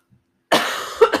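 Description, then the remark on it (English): A sudden burst of coughing, starting after a short silence: one harsh cough that rasps on, followed by two quicker, sharper coughs. “Okay, this coughing is getting out of hand.”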